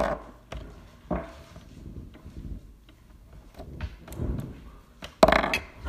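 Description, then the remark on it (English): Three six-sided dice (3d6), rolled for damage after a Dex saving throw in a tabletop game, clatter across a tabletop in a series of sharp, irregular clicks and knocks, with a louder burst of rattling near the end and no one speaking. “Let me roll 3d6.”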